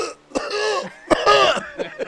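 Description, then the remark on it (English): A person coughs, two harsh hacking coughs with a raspy, throaty drag after each, followed by a smaller third cough. No one speaks. “If I just cough like that, it's okay.”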